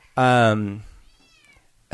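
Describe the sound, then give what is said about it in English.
A cat lets out one loud meow that slides downward in pitch, followed by a faint, thin trailing cry, and a voice starts right at the end. “is trying to deal with the cat right now.”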